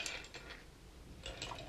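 Someone takes a quiet sip of a drink: a few soft, short slurps and faint clinks of the cup, with a brief pause between, no talking.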